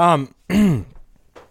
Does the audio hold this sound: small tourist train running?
no